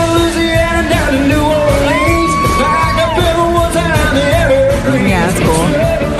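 A phone recording of a live rock cover, made by someone standing right in front of the performer: loud, dense band sound with bending guitar notes sliding up and down, and a crowd yelling and cheering throughout at a steady, unbroken volume.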